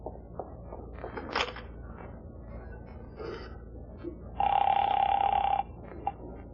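A telephone rings once in a loud, buzzy burst lasting about a second, after some faint shuffling and creaking.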